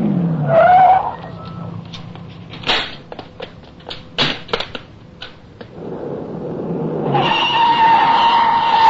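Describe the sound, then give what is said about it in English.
A car pulls in toward a house and skids: the engine rumbles as tires briefly squeal, followed by scattered crunching clicks and a few sharp thuds, then the engine surges again with a sustained high squeal. “Pull in, we've got to get to the house.”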